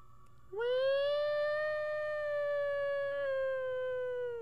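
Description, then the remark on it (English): A siren outside wails steadily, swelling in abruptly and then holding one long tone that sags slightly in pitch, fairly loud, with no voices over it. “Can you guys hear that siren?”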